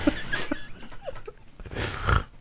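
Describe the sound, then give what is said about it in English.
Someone imitates a fart with their mouth: a couple of wet, raspy, buzzing bursts of moderate loudness, with a short sputter at the start and a longer, stronger one near the end. “It's concerning how accurate my mouth farts have gotten.”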